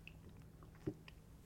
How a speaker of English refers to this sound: Hold on. Let me have a sip of my coffee.